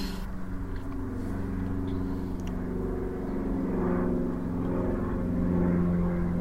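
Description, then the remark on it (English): A propeller plane coming in toward Santa Fe Airport drones overhead, a steady low engine hum with strong tonal harmonics that swells slightly louder as it passes, with no talking. “Plane coming in for the towards Santa Fe Airport.”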